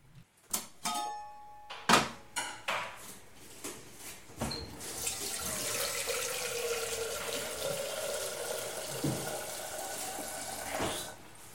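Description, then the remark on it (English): A few sharp clicks and clunks, then a steady rush of tap water pouring into a domestic kettle, its tone slowly rising as it fills before stopping with a knock. “As the owner of a kettle, you place water into the kettle and turn the switch on.”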